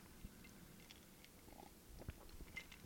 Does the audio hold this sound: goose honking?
no